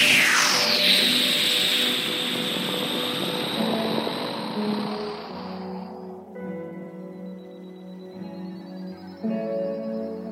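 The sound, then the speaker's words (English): A jet roars past overhead, starting loud with a high whine that sweeps downward, then fades into a low, steady engine rumble as it moves away. “When a jet flies by overhead on planet Earth, it goes like this.”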